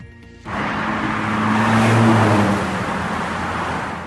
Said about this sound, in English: As we step into the car, Ryan turns on the ignition.